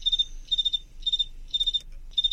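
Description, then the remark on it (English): A cricket chirps by rubbing its wings about 17 times a second, in short, high-pitched bursts of three or four rapid pulses, each burst followed by a brief pause, repeating steadily over a faint low hum. “So here we go, and they're rubbing their wings about 17 times a second here during the chirp, and then they pause and chirp again.”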